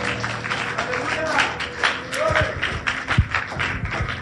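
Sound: audience clapping hands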